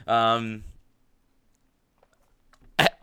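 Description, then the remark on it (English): A single loud, low, drawn-out burp after drinking a lot of seltzer, followed by a couple of seconds of near silence and a brief sharp click at the end. “Excuse me as I burp a lot because I had a lot of seltzer.”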